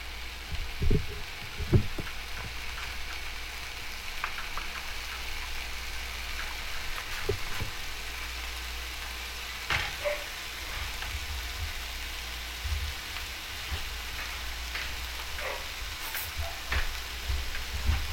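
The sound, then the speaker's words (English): Bacon sizzles steadily in a frying pan as it starts to render and brown, a dense crackling hiss that runs throughout with scattered pops and a few louder clanks near the start, fairly quiet, with no talking. “that sizzle.”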